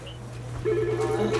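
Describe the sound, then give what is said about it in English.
A telephone rings at an office that takes patients' calls, with a steady, buzzy electronic tone that starts about halfway through and continues to the end, over a constant low hum. No one speaks. “The unlimited phones ringing, patients' names, patients knowing my name.”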